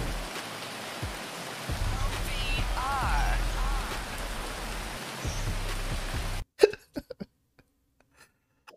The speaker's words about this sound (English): It's just raining, I guess, now. Listen, cue the rain.